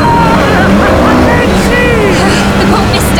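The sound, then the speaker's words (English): A motorboat engine roars loud, a steady throbbing drone over churning water noise, with muffled voices faintly underneath, as the boat turns back around. “I'm swimming for Kincaid's boat.”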